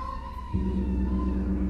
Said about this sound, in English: Jack is going to play the gong, and the gong produces lots of different sounds.